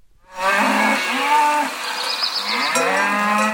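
A cow moos loudly: one long, drawn-out call, then a second deep, sustained moo after a brief dip. No one speaks.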